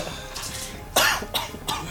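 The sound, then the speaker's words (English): A man gives a short run of harsh, raspy coughs, one strong hack followed by two or three weaker ones in quick, uneven succession, with no talking. “So he's coughing because he jumped too high.”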